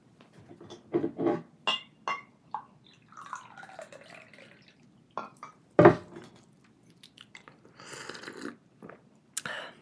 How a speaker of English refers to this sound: I just poured myself some tea.